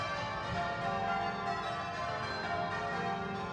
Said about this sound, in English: On Christmas Eve, Ruth rings the bells at the church.